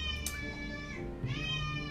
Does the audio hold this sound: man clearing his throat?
no